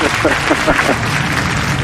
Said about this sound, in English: I wish we had I wish I had the applause button on. There we go.